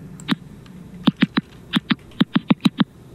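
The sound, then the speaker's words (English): A series of sharp, dry clicks, about eleven in all, popping out in quick irregular clusters against faint background hiss: a recording of the sounds made by a thirsty tomato plant. “And I actually have an example of what a plant that is calling out for help might sound like.”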